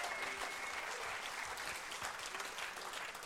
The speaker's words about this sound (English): If you received the word of God this morning, give him another clap right here. Come on. Now give him a big, big clap, everybody.